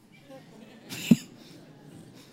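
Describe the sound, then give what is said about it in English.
A person imitates a woman's cough: one short, sharp burst about midway through, with a breathy rush just before it and quiet background noise on either side. “She does it again. I mean, she's still coughing.”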